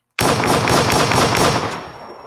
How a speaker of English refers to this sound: Let me see. Wish I got my gunshots ready.